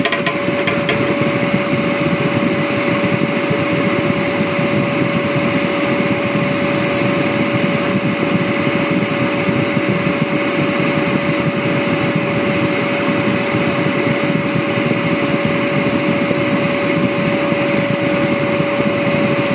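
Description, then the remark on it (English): A deep fryer cooking a basket of homemade chips runs steadily, a dense, even sizzle and crackle of hot oil with a constant mid-pitched hum underneath, loud and unchanging throughout, with no voices. “Shut the fryer off.”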